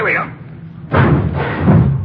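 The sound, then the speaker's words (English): A garage door swings open with a heavy thud, followed by about a second of rumbling, rattling movement before it settles. “No, watch the door”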